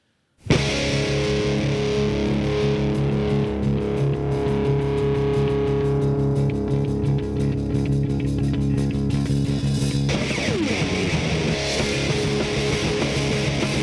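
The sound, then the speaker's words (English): A heavily distorted guitar and drum home recording from around 1994, with the drums played fast by the speaker's brother, blasts in abruptly and stays loud and dense throughout, with fast drum hits and a noticeable shift in the riff about two-thirds through. “Talk about distortion. No kidding.”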